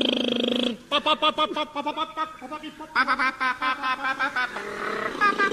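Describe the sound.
A person imitates a car engine starting with their voice: a sustained hum, then a rapid series of sputtering, revving vocal bursts rising and falling in pitch, fairly loud throughout.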